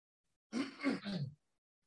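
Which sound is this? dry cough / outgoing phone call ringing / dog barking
dry cough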